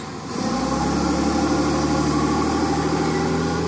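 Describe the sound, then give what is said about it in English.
A FedEx ground delivery truck's engine idles with a steady, low rumbling drone and faint vibration, rising at the start and then holding constant with no speech. “Sorry, FedEx truck. Ground delivery.”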